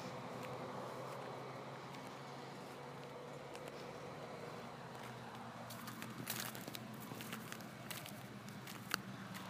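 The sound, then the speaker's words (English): A steady low hum of passing cars, air conditioning across the street and a droning, rattling refrigerator fill the background, while soft swishing flip-flop steps come in irregular bursts during the second half, ending with one sharp slap. “also known as the rattling of the refrigerator, air conditioning across the street, the hum of the cars going by, and the swish of my flip-flops.”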